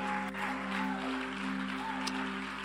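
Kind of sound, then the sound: crowd, audience clapping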